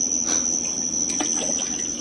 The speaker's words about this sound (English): Hey, you splashed me